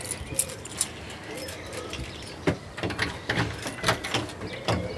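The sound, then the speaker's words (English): Keys jangle in short, irregular bursts of bright metallic clinks and clicks, like a key being worked into a door lock and turned, over a low background hum. “I just found my keys.”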